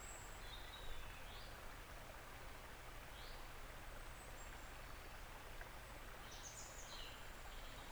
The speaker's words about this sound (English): The birds. The kingfisher.